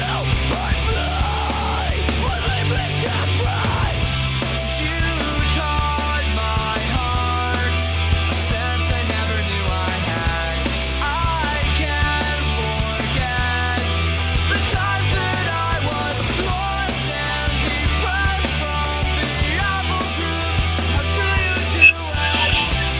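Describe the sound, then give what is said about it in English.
A loud, dense rock band demo with heavy bass and driving drums keeping the drum pattern of the original sequence, a screamed vocal shouting over the distorted instruments continuously for the whole stretch, with no spoken talk. “Bass sounds a lot better. Much better scream than the basement one to not wake your parents.”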